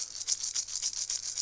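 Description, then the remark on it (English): A shamanic rattle shaken in a steady, quick rhythm, about nine crisp, bright swishes of seeds or beads in a second and a half, with no voices. “So I'll start with the chime, and then I'll end with the chime, and have my rattle.”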